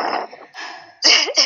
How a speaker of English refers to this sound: I'm just sitting here sniffling, and I'm like, this is annoying.